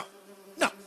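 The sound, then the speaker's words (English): A bee buzzes steadily and fairly quietly in a low, droning hum, broken near the end by a brief, louder rustling burst. No one speaks. “Look, in case you hadn't realized this, bees don't talk, and you're talking to me.”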